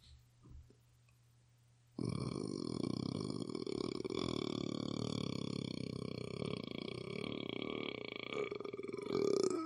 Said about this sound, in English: The world record for burping is 1 minute in a bit. And I can do about 20 seconds naturally without training.